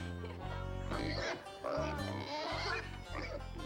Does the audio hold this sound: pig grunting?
yes